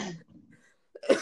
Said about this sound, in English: sorry, I have a cough right now.